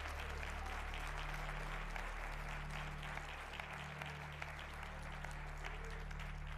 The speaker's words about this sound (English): Come on, give them a hand clap.